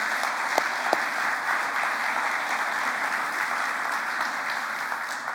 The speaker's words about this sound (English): I know there are so many of you in this room that played a part either in donating time, resources, efforts yesterday. And I just want to give everyone involved another round of applause. So can you do that for me?